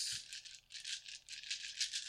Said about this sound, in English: And I have to roll a dice for each model in the unit. On a 6...